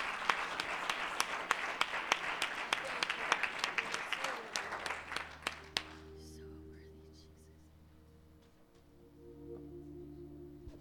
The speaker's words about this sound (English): Why don't we give the Lord a hand clap of thanksgiving as he comes?